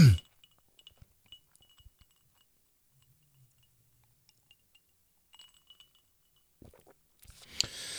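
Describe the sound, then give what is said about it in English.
A quiet, quick sip of a drink from a glass: faint clinks and small mouth clicks, a soft swallow, then a brief rustle at the end. Nobody speaks. “Let me take a real quick sip.”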